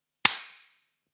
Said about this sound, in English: Oh, we haven't clapped yet. Should we do the clap? Shall we? Yeah. 3, 2, 1.